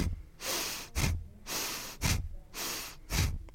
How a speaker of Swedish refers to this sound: Du koncentrerar exhaleringen genom näsan. Så inandningen kommer automatiskt när du pumpar naveln med varje exhalering. Och när du exhalerar genom näsan. Men det är mest om rytmen.